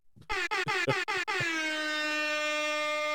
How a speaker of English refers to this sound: Give him an air horn for that.